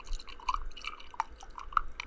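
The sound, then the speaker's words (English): A fizzing drink in a cup, held up to a microphone, crackles and pops steadily, a dense patter of tiny bubble bursts with a few brighter drip-like plinks standing out. Fairly quiet, with no voices. “Right when I moved the cup over to the mic, it stopped making that satisfying noise.”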